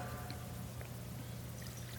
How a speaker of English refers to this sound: He pours the water.